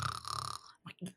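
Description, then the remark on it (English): A voice imitates a person's loud snore: a rough, raspy rasp lasting about half a second, followed by two short throaty snorts. “So Jason's snoring, just like I think I'd finally just kind of started dozing off, and then all of a sudden I just hear.”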